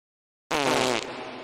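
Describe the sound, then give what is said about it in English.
After a short silence, a loud, buzzy fart sound effect blares for about a second, its raspy tone dipping slightly partway through and trailing on to the end. “Somebody cue up the fart sound effects.”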